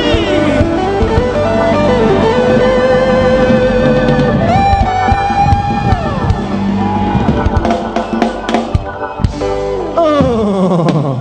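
An audience shouts and cheers loudly in praise, continuously for several seconds, a dense wall of overlapping voices with sustained instrumental tones running underneath.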